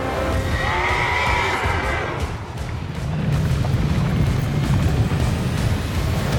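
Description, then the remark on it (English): A horse whinnies loudly with a shrill, wavering cry, then a heavy rumbling clatter of hooves and chariot wheels charges down a mountain path, filling the rest of the sound. “A chariot flew down the mountain path. It was led by hell horses, red-eyed and foaming at the mouth.”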